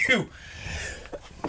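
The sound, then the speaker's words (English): A single sharp sneeze bursts out right at the start, then trails off into a quieter, breathy background. “Bless you. Bless you.”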